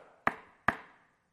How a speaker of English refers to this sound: It was that same sound of the knock on the door that the temple police used to do. We thought they'd come for us.